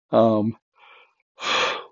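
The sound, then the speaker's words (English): A drawn-out yawn: a short voiced groan, a faint breathy pause, then a long airy exhale trailing off, with no talking. “I wish I could stop yawning.”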